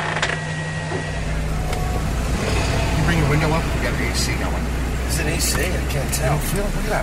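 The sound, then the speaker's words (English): Steady engine hum and road rumble fill the cabin of a moving Volkswagen Fox with the windows up and air conditioning running, a continuous low drone with faint rattles, while indistinct voices murmur underneath. “Now … has shotgun while … sits in the driver's seat”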